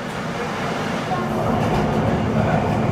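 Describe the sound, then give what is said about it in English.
A Manhattan-bound F subway train running via the E line from Forest Hills, 71st Avenue toward Jackson Heights, Roosevelt Avenue rolls along at steady speed, a loud continuous rumble and rushing roar, with the noise swelling slightly louder partway through. “This is a Manhattan-bound F train via the E line.”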